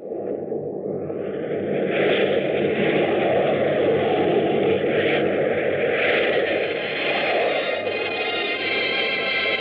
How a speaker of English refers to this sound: As the plane hit the glide path down to the landing strip at the south end of Las Vegas